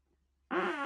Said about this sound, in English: And I farted. That's just great. Nobody wants to listen to a fart. I'm pretty sure I could cut that out. No, leave it in. Leave it in.